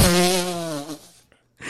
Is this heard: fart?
yes